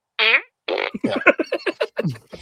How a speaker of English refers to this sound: One of us needs to get a fart gun for us to shoot at you.